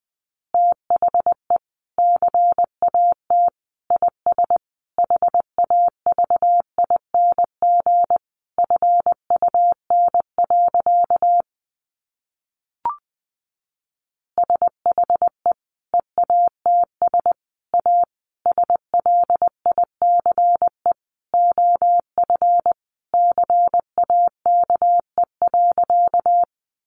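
Morse code sent at a brisk 20 words per minute: a single steady mid-pitched tone keyed on and off in quick dots and dashes, running in two long stretches separated by a short silent pause.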